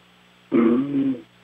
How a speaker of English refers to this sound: Is he sleeping? Yeah, I think he is. Yeah, he's got a little snore to him.